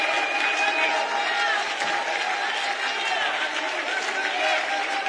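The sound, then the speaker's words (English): An audience claps and shouts together, clapping their hands unto the Lord, a steady dense wash of applause with raised voices and cheers layered over it, loud and continuous throughout. “Oh, you ought to clap your hands unto the Lord and shout with the voice of triumph.”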